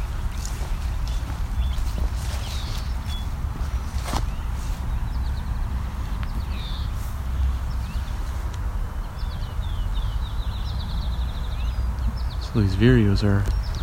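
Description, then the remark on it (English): A brown-headed cowbird gives faint, high-pitched call notes in short bursts over steady low rumbling background noise, with a brief harmonic voice-like sound near the end. “It's a brown-headed cowbird. Somewhat high-pitched bird.”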